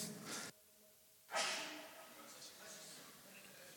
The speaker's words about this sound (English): Bless you. Bless you. Thank you.